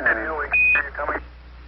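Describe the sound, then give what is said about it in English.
A single short, steady high-pitched beep, a Quindar tone signalling an incoming message on manned space mission radio, cuts in over crackly, band-limited radio chatter, with muffled voices on either side of the tone. “Those little beeps are called Quindar tones, and you have to be a real space nerd to know that.”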